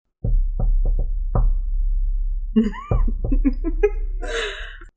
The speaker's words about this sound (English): So you both get to the door of the bathhouse. What do you do? Knock.